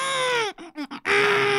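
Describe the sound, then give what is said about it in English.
A voice imitates a newborn's scream: a loud, strained wail that breaks into two short choppy bursts, then swells into a long, harsh, sustained cry. “You know, clenched fists, eyes closed, they're screaming, they kind of sound like.”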